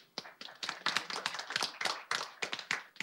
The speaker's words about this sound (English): And at this point, let's just give him a round of applause as well, because this is a celebration.